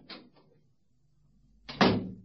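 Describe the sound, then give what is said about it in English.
A couple of quick metallic clicks, then a pause and a loud thud of a door being shut and bolted, with a short rattle as it settles. No one speaks. “I've just bolted the door.”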